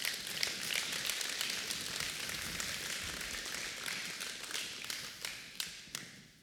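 A crowd applauds steadily for several seconds, a dense wash of many hands clapping that thins toward the end, leaving a few distinct sharp claps as it fades.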